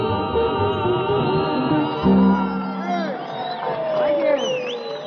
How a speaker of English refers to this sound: You know, now, I know you're quite crowded out there, and I know you have a lot of difficulty in applauding for the groups that are up here tonight.